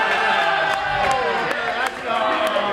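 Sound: group cheering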